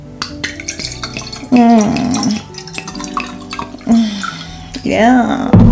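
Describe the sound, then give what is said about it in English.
Cold wine glugs and splashes into a glass, the pitch rising as it fills, in a few separate pours with brief pauses and clinking between them. “It requires, I pour wine.”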